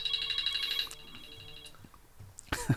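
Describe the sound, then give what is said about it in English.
A mobile phone ringtone plays a rapid, high-pitched electronic warble for about a second, then cuts off, leaving quiet background before a short burst of rustling or handling noise at the end as someone tries to switch the phone off. “I suppose I'm trying to figure out how to switch my phone off, but anyway.”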